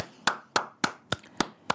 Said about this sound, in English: That clap is for Monica McNutt, who absolutely crushed the call along with Lisa Byington. So I just wanted to shout out sis real quick.